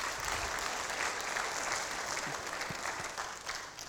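An audience claps steadily as a man goes back to his seat, a dense wash of many hands at an even, fairly loud level that tapers slightly toward the end. No voices stand out over the clapping.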